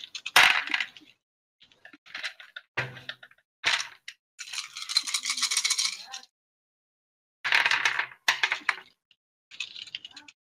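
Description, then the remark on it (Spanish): Ten-sided dice clatter and rattle across a hard table in several separate bursts as attack rolls in a tabletop role-playing game, a few sharp quick rolls and one longer tumbling rattle, with no voices. “Vale, pues empieza a tirar dados.”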